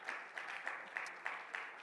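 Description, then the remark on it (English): An audience claps hands together in praise, in a steady, even rhythm, about three beats a second, the many hands blending into a full, moderately loud sound with no one talking. “Let's clap our hands and praise him.”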